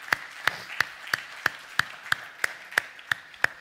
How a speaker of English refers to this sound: Why don't we go ahead and give our Lord another hand clap of praise.